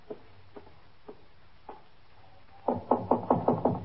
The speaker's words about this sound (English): Cross the room and in that door. All right, thank you. Just knock on the door. Thank you.